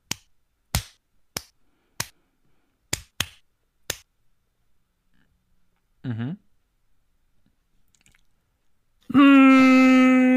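A run of about seven crisp finger snaps in quick, slightly uneven succession, followed by quiet, a short squeaky warble, and then a loud sustained tonal sound.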